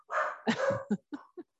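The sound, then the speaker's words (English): Dogs bark, starting with a drawn-out, whiny yowl followed by a quick burst of four sharp, short barks with brief pauses between them. “Happy holidays from the dogs.”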